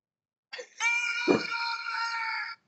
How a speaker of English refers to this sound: I thought it was going to yell Mortal Kombat like this.